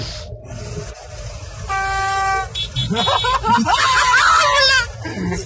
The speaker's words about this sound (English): Here, take your vuvuzela.